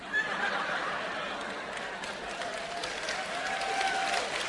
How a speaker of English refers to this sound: Now, obviously, that's the women clapping.